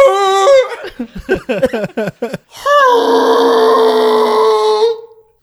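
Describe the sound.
A person voices a long, strained roar imitating the T-Rex from Jurassic Park, a sustained raspy bellow lasting about two and a half seconds, preceded by a quick run of choppy grunting vocal sounds.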